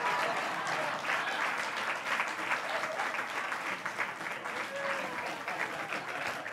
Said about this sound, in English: Keep a hand clap going for her so it doesn't get awkward.